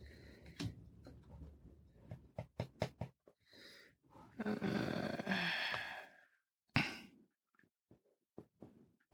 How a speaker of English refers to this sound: All right, I wrote stupid.